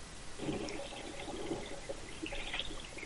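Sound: toilet flushing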